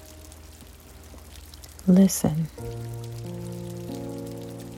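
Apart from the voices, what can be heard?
rain falling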